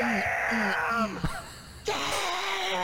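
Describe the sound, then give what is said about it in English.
A person yawns, a long voiced moaning stretch that breaks off briefly with a short gasp, then resumes and trails out, with no speech. “We need some kind of button for when you yawn.”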